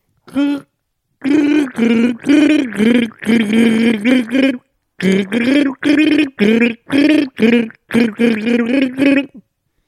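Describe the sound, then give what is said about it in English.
Someone gargles water loudly, wobbling the pitch through a sung Christmas carol melody in a series of bubbling phrases with short breaks between them, as part of a Christmas gargling game. “We do like a gargling game of Christmas.”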